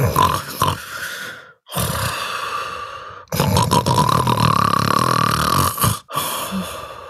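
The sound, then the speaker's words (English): Loud, rasping snores and snorts from Oinky the pig asleep in his sty, legs twitching, in four long, rough bursts separated by brief silent pauses, each one a thick, guttural rumble with a nasal edge. “With snoring and snorting loudly and legs twitching, music pervades the porcine's mind.”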